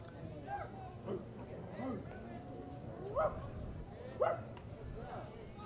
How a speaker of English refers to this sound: Thought I heard a bark in the park.